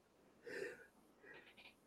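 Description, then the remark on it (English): A single muffled, soft sneeze, followed by a couple of quieter breathy sniffs before a sharp click at the end. “Bless you.”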